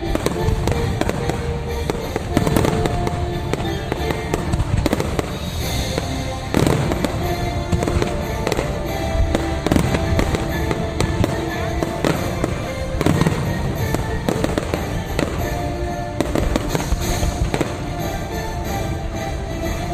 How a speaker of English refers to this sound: Or no, that's their fireworks show, I guess.